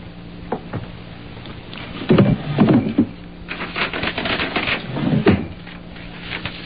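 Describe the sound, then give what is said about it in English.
A wooden drawer in the table by the window, holding a pen and hotel writing paper, slides open with a rattling scrape. Moments later comes another shorter rumble and clatter of contents, fairly loud amid quiet. “In that drawer, the table by the window, there's a pen and some hotel writing paper. Go get it and sit there.”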